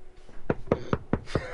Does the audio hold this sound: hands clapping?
no